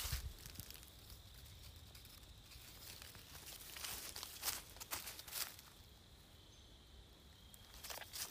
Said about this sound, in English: Now some crickets are noisier right now because it's getting closer to sunset. Listen to the crickets.